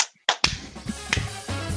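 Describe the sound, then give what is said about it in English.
A sharp, loud hand clap, made as an editing marker so a segment can be cut out of a recording, rings out after a brief silence, followed by a low lingering hum and a few fainter knocks. No voices are heard. “Maybe we need a clap.”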